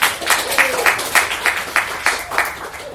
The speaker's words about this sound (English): Gasps. Applause. Cheers.